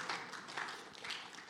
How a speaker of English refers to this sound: And it's interesting because in the last 18 months, the Lord has recovered or blessed us with more financially than we had in 10 years. That's worth a clap, yeah.